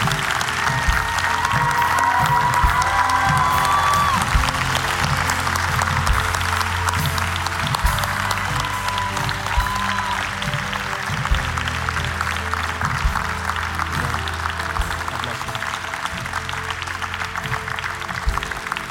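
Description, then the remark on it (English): A church audience claps steadily for the whole stretch for those saying yes to Jesus and coming down to the altar, a dense, continuous wash of applause with no pauses, over a low sustained musical drone and a few brief high tones. “Church, let's put our hands together for those who are saying yes to Jesus, for those who are making a step forward, for those who are coming down boldly.”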